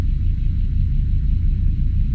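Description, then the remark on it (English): A steady, deep rumbling hum, like a diesel engine idling in the distance, drones on without a break, with no voices or other sounds. “The most common description of the hum is of a sound of a diesel engine idling in the distance.”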